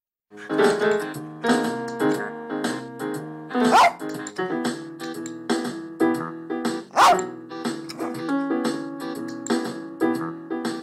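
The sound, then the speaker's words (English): Lola Bell, a small blind rat terrier from the film Heart of a Dog, barks and yips repeatedly in short bursts while playing electronic keyboards set on the floor over a backing track, the barks loud and scattered irregularly across the music. “She's playing the rhythms on top and barking along.”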